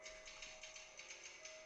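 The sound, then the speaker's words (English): Typewriter keys clack in a quick, fairly steady rhythm, a dozen or so strikes at low volume, with a faint constant hum underneath and no voices, from the hotel scene in The Shining where Jack Nicholson types on his typewriter. “So yeah, we're watching the scene where Jack Nicholson's typing on his typewriter in the hotel of The Shining.”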